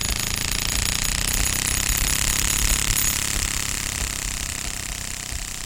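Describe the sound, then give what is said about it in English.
A loud, continuous rapid flapping rattle of a playing card held in a clothespin against turning bicycle spokes, buzzing steadily like a small motor or lawnmower for several seconds with no voices. “And, you know, finally, as you really ramp up that card that's in the clothing pin, it makes almost sound like a lawnmower.”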